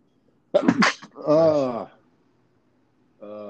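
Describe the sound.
A single loud sneeze bursts out sharply, followed by a drawn-out, pained vocal groan; after a short pause a voice briefly starts up again.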